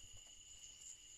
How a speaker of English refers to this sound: Okay, this is out here. It's real quiet right now. I'm listening to the crickets, bud.